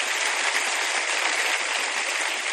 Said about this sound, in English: What does that mean exactly, to do life with God? And that's an applause line. People were kind of sitting there going, okay, I'll applause. Okay.